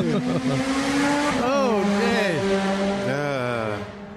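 A motorcycle engine roars, its droning pitch holding steady and then dipping and bending as it revs and passes, staying loud before easing off at the very end.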